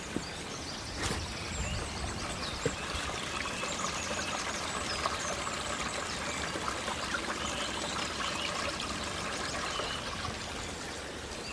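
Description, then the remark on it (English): A small mountain stream flows steadily, a continuous rushing and babbling of water with fine trickling detail, evenly loud throughout and with no one speaking. “Let's just listen to that stream.”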